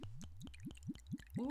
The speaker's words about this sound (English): So I'm going to pour.